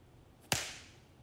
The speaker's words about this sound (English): Wake up. That's a wake-up clap. That wasn't a spank. Necessarily. Per se.